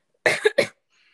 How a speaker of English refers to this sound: Wait, I need a cough.